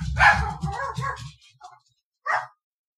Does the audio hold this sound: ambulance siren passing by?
no